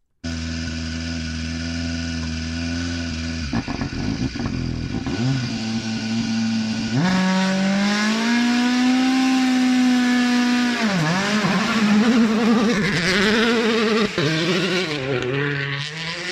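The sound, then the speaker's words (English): WRC rally car engines roar and rev hard through gear changes while testing in a midsummer forest in Finland, pitch climbing and dropping as the cars blast past, loud and continuous with an echoing outdoor quality and no talking. “After 3 months of silence, the glorious echoes of WRC cars testing in the midsummer forests of Finland, a sound we have all missed.”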